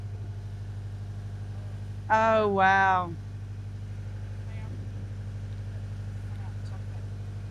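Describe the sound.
A generator set drones steadily in a yacht's engine room, a constant low mechanical hum that fills the whole recording, with a person briefly exclaiming over it partway through.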